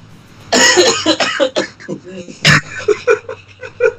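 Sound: coughing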